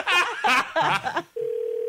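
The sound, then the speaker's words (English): A burst of voices laughing gives way to a steady, unbroken telephone dial tone that hums on alone, fairly loud, until the end, as a call is placed to a wife. “I'd like to try to get the wife on the phone right now”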